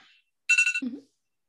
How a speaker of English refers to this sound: Stop my alarm. My alarm just was like, oh, let me just go off in the middle of this.